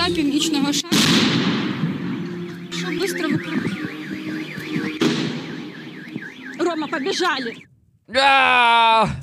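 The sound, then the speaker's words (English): A sharp, loud explosive bang of an RPG being fired at a fair in Ukraine cuts through a woman being interviewed, followed by a second blast as a car alarm wails and she cries out. “Here's the moment the RPG is fired off while a woman was being interviewed and she reacts to the bang.”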